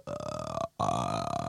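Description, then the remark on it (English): A voice makes a rough, gravelly burp-like growl in two sustained bursts split by a brief gap, loud, with a buzzing, rattling texture and no spoken words. “It's like a gravelly burp, I guess.”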